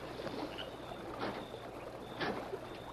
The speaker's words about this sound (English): You mean you heard something out there? Got to hear splash. Oh, might have been a fish. It not sound like that. Sound like oar splash.